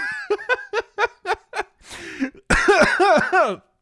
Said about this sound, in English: Oh, I coughed. Oh, boy.